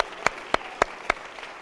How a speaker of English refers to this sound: Come on, clap your hands and thank God for it.